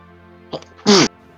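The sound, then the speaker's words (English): A single sharp sneeze, preceded by a quick intake of breath, loud with a forceful burst of noise that cuts off abruptly over a faint steady hum. “Bless you.”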